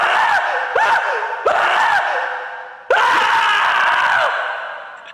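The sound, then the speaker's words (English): The recorded Michael Wong scream: a man's loud scream comes in four harsh bursts with swooping pitch, the final wail stretching longest before trailing off. No one talks over it. “Let me scare you off with the Michael Wong scream.”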